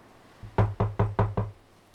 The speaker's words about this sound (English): I think someone's at the door.